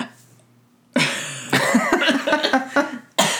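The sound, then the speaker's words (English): After a moment of quiet, a sudden hiccup breaks into a harsh cough, followed by choppy throaty noises and one more abrupt burst at the end. “That was about to be a burp cough, wasn't it? No, it was a hiccup.”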